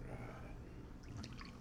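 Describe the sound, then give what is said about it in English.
An IPA beer pours into a glass in a soft, steady trickle, with faint bubbly splashes and fizz picking up toward the end, fairly quiet. “Is that how you pour beer?”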